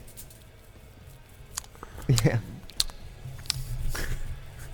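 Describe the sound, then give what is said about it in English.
Irregular crisp crunching, like a guinea pig munching hay: scattered dry crackles with a louder cluster midway, over a low steady hum, while a voice briefly speaks. “Doesn't this sound like a guinea pig eating hay?”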